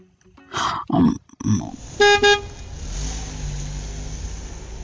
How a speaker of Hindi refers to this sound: उधर बॉस चिल्ला रहे थे और मैंने अपने कार की हॉर्न को दबा दिया।